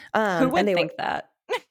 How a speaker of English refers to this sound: Excuse me. Weed cough. Always.